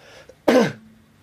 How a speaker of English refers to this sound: Oh, that's your guitar making my coughs. Oh. Resonate. Oh. Oh, repeated dry cough.